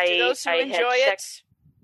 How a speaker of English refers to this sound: Bless you.